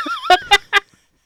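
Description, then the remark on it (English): A warbling electronic whine leads into three sharp, loud chicken-like squawks in quick succession, a comical sci-fi weapon being fired during a movie shootout, then silence. “One thing I wanted to highlight is those weapons you talked about, that we don't see lasers, but we do see sort of far off explosions. They sound like chickens when they're fired.”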